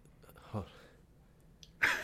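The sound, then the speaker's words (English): A short, breathy intake is followed by one abrupt, loud sneeze with a bright, hissing burst that runs to the end, with no talking. “Bless you.”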